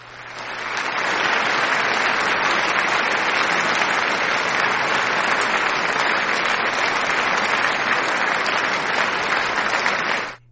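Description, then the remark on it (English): A steady burst of crowd applause, loud and dense from start to finish, swelling in quickly and cutting off abruptly after about ten seconds, with no voices. “All right, so I don't know if I played the applause.”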